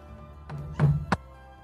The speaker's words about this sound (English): So she might not even notice the knock at the door right away. And it might take like another louder knock before she finally goes over to answer the door.